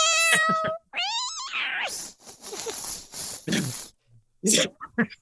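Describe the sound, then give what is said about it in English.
Two drawn-out, whiny meows from Julie the Cat sound at the start, followed by noisy rustling and a few short, sharp bursts toward the end. “And you have Julie the Cat here.”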